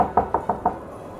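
Five quick, evenly spaced knocks on a neighbor's wooden front door from the porch, moderately loud, each a dull hollow rap, followed by a brief quiet moment with no voices.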